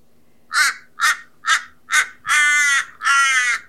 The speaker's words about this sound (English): And we have Wakan the crow in the background. So he's one of our spirit birds. So we won't mind him if he gets a bit talkative and loud, eh?